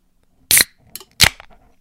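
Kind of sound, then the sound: food or drink, drink can cracked open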